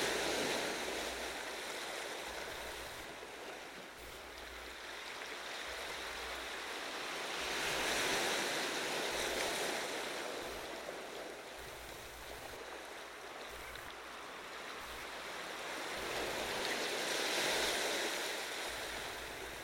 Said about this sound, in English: Peace enters your mind as you connect with the rhythm of the waves.